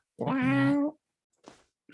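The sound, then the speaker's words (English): A single loud, drawn-out cat meow, steady and tonal for most of a second, followed by a couple of short, breathy noises. “I can't believe that cat just fucking flexed.”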